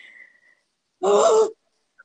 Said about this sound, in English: What is the purpose of that noise? It's called a gasp if you've never heard that. Yeah, I do know, but like what's the purpose?